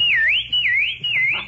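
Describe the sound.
A person whistles a bird chirp called the Huey, a clear high tone that swoops down and back up in three smooth repeated waves, loud and steady with no talking.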